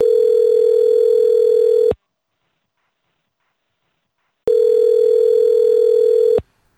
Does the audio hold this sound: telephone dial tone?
yes